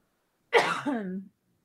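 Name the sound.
coughing and throat clearing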